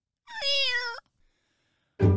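A single drawn-out cat meow, loud, lasting under a second, followed by a pause of silence and then an abrupt, louder burst of noise at the very end.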